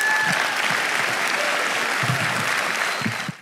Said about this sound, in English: Would you give Brother Keith Moore a big hand clap as he comes?